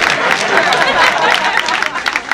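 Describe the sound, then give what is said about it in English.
An audience breaks into steady clapping and cheering, a dense, loud wash of many hands that holds for a couple of seconds with a few scattered louder claps near the end. “Y'all better clap.”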